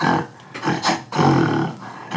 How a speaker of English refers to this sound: This is what it sounds like when a gorilla growls. That's you know when doves cry? This is when gorillas growl.